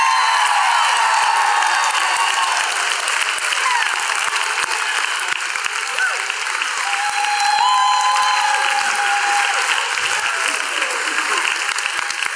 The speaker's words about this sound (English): Our vision is for the student vision to live, and it is through these leaders that have been named and so many more that we're grateful. So with that in mind, can we go nuts with a giant round of applause for those people?